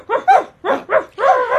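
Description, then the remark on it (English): Big dogs with light brown coats, Dash and Lady, a brother and sister, bark loudly, a quick run of about five harsh, overlapping barks with brief gaps between them and no talking. “They are quite big dogs with light brown coats.”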